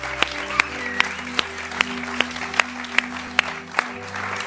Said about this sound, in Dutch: So let's thank your pastors right now. Dus laten we je voorgangers bedanken. Hey, come on and give them a big hand. Geef ze een grote applaus.